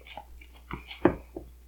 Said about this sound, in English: Sorry, I'm chewing.